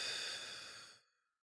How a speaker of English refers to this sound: Bring your hands back into that position and just breathe in through the nose and out through the mouth.